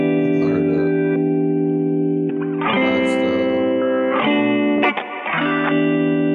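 A hip-hop song plays, with heavily effected, warbling vocals riding over steady sustained synth chords and a low bass line, the sound thick and distorted throughout.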